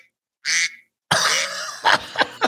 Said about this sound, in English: Oh, can you hear my phone? I didn't. Oh, I love when my phone, when I get a message or something like that, I have my notification is set to like it's a duck.